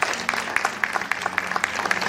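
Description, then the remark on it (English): An audience claps steadily as the broadcast goes off the air, a dense patter of many hands with sharp individual claps popping out in an uneven rhythm, fairly loud and continuous throughout. “Let's give them a hand clap as they go off the air.”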